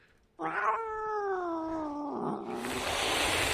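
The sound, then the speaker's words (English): An angry cat lets out one long, drawn-out yowl that slides downward in pitch, then breaks into a loud, sustained hiss, with no one talking. “that's that wonderful cat that you are... Meow, meow, meow, meow.”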